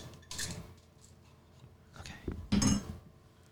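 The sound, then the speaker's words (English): Two close, muffled bumps as an object knocks against a microphone, a lighter one first and a louder, boomy thud about two seconds later, with faint handling rustle between. “He just crashed it into the mic.”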